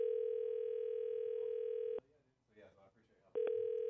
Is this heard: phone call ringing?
yes